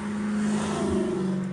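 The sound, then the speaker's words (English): A car with a big motor rumbles and revs steadily amid street traffic as rain starts to fall, a deep continuous motor drone heard from about five blocks away with no voices. “That thing still rumbling, man. Hear that thing. 5 blocks away.”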